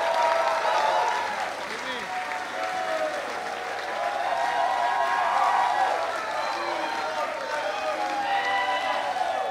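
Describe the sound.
An audience breaks into steady applause to welcome the next speaker, a dense wash of clapping that holds fairly even for several seconds, with a few cheers and voices mixed into the crowd noise.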